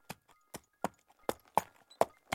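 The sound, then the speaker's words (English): Horse hooves clip-clop at a steady walking pace, seven sharp, hollow strikes spaced evenly over a couple of seconds, fairly loud, with no voices. “Here, I'll see to your horse.”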